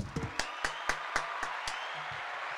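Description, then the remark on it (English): A short burst of applause: about seven sharp, evenly spaced claps in a quick steady rhythm, moderately loud, then it stops and a faint low hum lingers. “Let's give him a round of applause real quick.”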